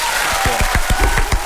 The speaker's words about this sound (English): Please, a fake round of applause for our guest co-host in this hour. It's John Cooper Clarke.